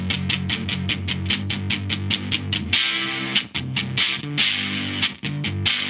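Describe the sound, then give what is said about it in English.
Electric guitar from Thunder Road Guitars in West Seattle, played through a gated, sputtery Old Blood distortion, plays a chugging, rhythmic riff of short choppy bursts, fairly loud with harsh fizzy highs, then shifts into a denser, more sustained section. “Boy, that kind of gated, sputtery, old blood distortion.”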